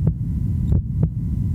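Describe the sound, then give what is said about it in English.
A steady, regular human heartbeat thumps, three evenly spaced beats over a low, constant hum, with no voices. “You possess the greatest electrical device in the world. It's your heart. It's supposed to run like this.”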